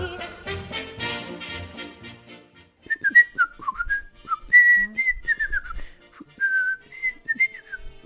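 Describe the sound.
A person whistles a quick, warbling imitation of a robin's song, with rising and falling chirps and trills, following a brief burst of orchestral music. The whistling is clear, with no talking.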